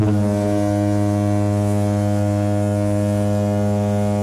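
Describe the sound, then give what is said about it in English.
A loud, sustained horn blast like a foghorn, used as a spoiler warning horn, holding one low, buzzy pitch with rich harmonics for about four seconds without a break, and no voices present. “Okay, let's fire off the spoiler horn.”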